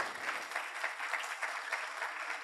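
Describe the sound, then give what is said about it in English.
An audience claps steadily for people called up to the front, many hands blending into a dense, even patter of applause that holds at a constant level throughout, with no voices standing out. “You guys should clap for them now.”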